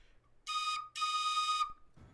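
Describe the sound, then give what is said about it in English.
A train whistle sounds in the distance in two loud, steady, high-pitched blasts, a short one followed by a longer one, with no talking over them. “You hear that sound rumbling in the distance? You know what that means. Train to the distance.”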